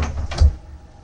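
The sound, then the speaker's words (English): A man gets up and slams a door shut behind him once with a heavy, booming low thud, loud, followed by a short fading rattle and echo. “gets up, muttering to himself in Korean, then slams the door behind him.”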